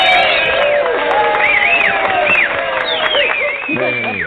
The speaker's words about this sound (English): You have to get the applause, right? Like, you deserve it.